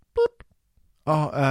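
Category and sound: signal or alarm, telephone dialing tones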